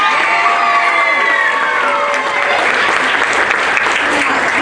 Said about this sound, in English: I think we need to clap for our teachers. Were they awesome this week?